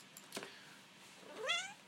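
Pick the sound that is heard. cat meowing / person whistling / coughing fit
cat meowing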